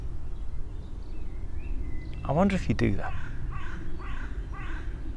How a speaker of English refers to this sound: I feel a bit like David Attenborough here in the woods. There's quite a lot of birds. I don't know if you can see them.